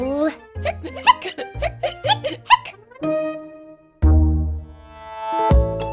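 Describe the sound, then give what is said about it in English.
Several voices let out a quick run of high, squeaky hiccup sounds, about eight in a row, followed by sustained musical tones and a low swell. “Now they all have the hiccups.”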